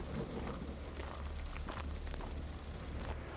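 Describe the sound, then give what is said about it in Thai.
A steady, dense rush of wind and rain-like noise fills the scene, with a deep low rumble underneath suggesting distant thunder rolling continuously for a few seconds. “รอบตัวของเมอามีลมพัดแรงเสียงฟ้าร้องครืนดังมาจากที่ไกลๆทั้งที่ไม่มีวี่แววของพายุฝนมาก่อน”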